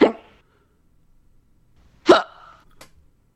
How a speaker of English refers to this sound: Hiccups. Hiccups.